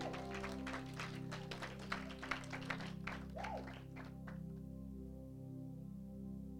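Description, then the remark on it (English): A brief burst of group clapping for a young person who quoted the scripture Isaiah chapter 9 verse 8, many overlapping sharp claps for about four seconds before fading out, over a steady low hum that continues afterward. No one speaks. “Clap for her.”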